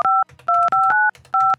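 A quick run of telephone keypad tones, six or so crisp two-pitch beeps dialed in an uneven rhythm, loud, with faint background noise between presses.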